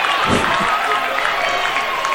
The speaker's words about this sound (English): And that'll be the Pirates' first hit on the day. Let's hope this will spark the Pirates as the fans are up on their feet clapping.